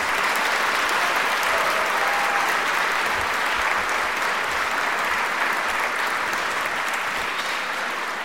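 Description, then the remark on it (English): Sustained applause from a large audience welcoming author Jim Lehrer, anchor of PBS's NewsHour, at the start of an author series in 2012: a dense wash of many hands clapping at steady loudness for several seconds, with no voices standing out. “You may clap.”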